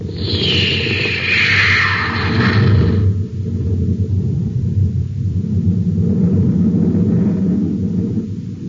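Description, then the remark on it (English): A loud blast-off of the rocket ship Terra 5 firing its jets: a roaring rush with a hissing whoosh that sweeps downward over the first few seconds, then settles into a steady, heavy low rumble that continues to the end. “Stand by for blast off. Close ports. Close ports. Fire jet. Fire jet. Up ship and away.”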